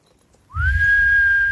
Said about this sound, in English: Was the whistle so perfect that it cut the audio out? Did you hear that? It did sound like it cut it a little bit.